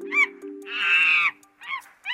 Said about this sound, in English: Well, that was a violent monkey. That monkey was like full on screaming. It's a very excited monkey.